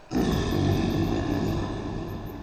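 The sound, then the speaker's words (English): A deep, loud roar from a massive grizzly bear about 10 feet away erupts almost at once and holds steady for over two seconds, heavy and rumbling, on its own with no talking. “see a massive grizzly bear about 10 feet away. Shaq stands up. The bear lets out an impressive roar.”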